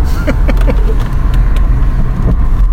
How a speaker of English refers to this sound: Blum, blum, blum, blum, but... cans of beer rolling around on the floor.